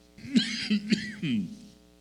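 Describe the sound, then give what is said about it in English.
A man coughs forcefully in a short fit, three or four harsh, raspy bursts in quick succession, fairly loud, with no talking. “Oh, excuse me, please. All right, had to do a powerful one there.”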